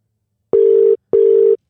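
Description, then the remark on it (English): Two steady electronic ringback tones, each lasting under half a second with a short pause between, from a call to Jack Waterson that goes unanswered on the other end. Clear, with no voices. “Maybe it just rings Jacko. Forever.”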